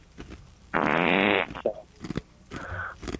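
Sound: fart into the microphone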